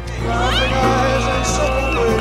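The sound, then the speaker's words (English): A concert crowd roars with shrill, rising screams and whoops over a dense, steady wall of cheering, loud and unbroken for the whole stretch, with clapping buried in the din. “All you could hear was screaming, hollering, clapping.”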